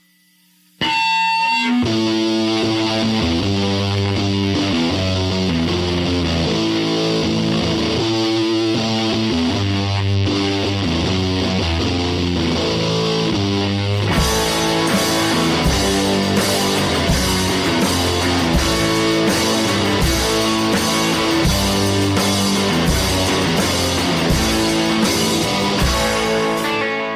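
The opening track of a rock album bursts open with a ringing, feedback-laden distorted electric guitar, driving a heavy repeating riff; around halfway, crashing cymbals and fuller drums join in and the sound grows louder and brighter.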